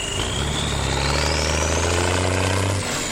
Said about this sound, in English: And so do the logging trucks. Every day, dozens of huge 18-wheelers haul load after load of raw logs and cut timber to the Atlantic port at Douala.